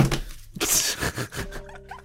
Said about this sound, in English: I guess I'm slamming my desk.